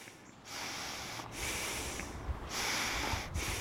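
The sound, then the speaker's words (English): Slow, deep breathing of a man recovering from a seizure on the grass, his head held in someone's lap: long, airy, rasping breaths follow one another with only brief pauses between them, steady and fairly soft, with no talking. “breathing slows and deepens.”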